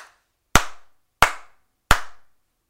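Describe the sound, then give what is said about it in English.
Three sharp, loud hand claps at a slow, even pace, each with a short echoing tail, and silence between them. No one speaks. “Four claps. Four slaps.”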